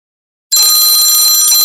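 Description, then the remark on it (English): After a moment of silence, a workout timer bell in a foam-rolling session rings out loud and steady, a bright, high-pitched metallic trill sustained for just over a second with no one talking. “All right, 3 seconds on the bell.”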